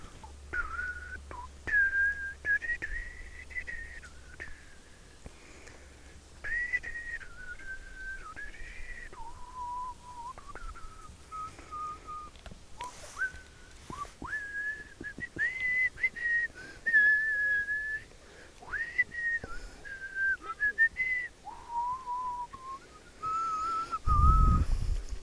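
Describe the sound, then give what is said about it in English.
A person whistles a film theme tune during a walk, a clear, steady melody of sustained notes rising and falling over about twenty-five seconds, with a faint outdoor rumble underneath and no talking. “That's me whistling the Jurassic Park theme tune”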